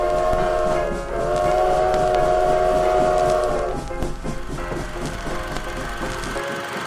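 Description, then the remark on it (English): A loud train horn blares steadily for a few seconds over the heavy rumble of a train, then cuts off, leaving the clattering roar of rail cars rolling past. “There's a train coming, sir!”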